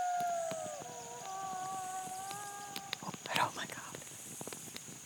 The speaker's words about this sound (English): Oh my God, that is a wolf. That's the first wolf I've heard in 9 months.